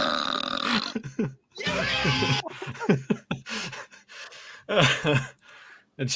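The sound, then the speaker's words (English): A series of loud, drawn-out burps with voiced, talk-like rhythm, as if someone is trying to form words while belching, broken by short gasps and pauses between bursts. “I can remember the days of trying to talk when you're burping.”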